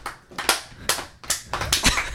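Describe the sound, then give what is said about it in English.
Half a dozen sharp hand claps land in an uneven rhythm, each a crisp, bright smack with a brief tail, moderately loud and with no talking over them. “Cat claps are so interesting sounding.”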